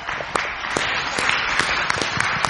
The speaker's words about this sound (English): Give our puppet team one more round clap of praise. I tell you, I'm blessed each week when I see these guys up here.